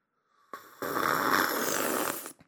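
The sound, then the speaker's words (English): A loud, drawn-out slurp, a single rough, hissing intake of air that starts abruptly, holds steady for well over a second, then cuts off. No talking accompanies it. “It's just an obnoxious slurp.”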